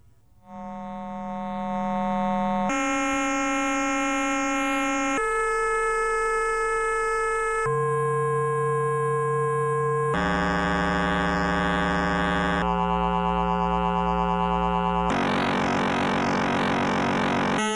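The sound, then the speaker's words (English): A series of about seven steady electronic combination tones from oscillators, each held for roughly two to three seconds before switching abruptly to a new buzzy, harmonically rich combination, loud and continuous with no voices. “To illustrate, here's a variety of combination tones.”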